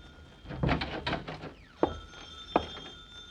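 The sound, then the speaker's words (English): A telephone rings with a steady, sustained tone after a brief burst of clatter, while a few soft thumps land at intervals. “Uh-oh, the phone.”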